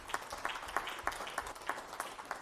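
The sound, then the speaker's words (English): A crowd gives itself a hand of praise one morning, clapping together in a steady, even rhythm, sharp hand claps landing about three times per second over a wash of scattered applause, with no talking. “Give yourself a hand of praise this morning.”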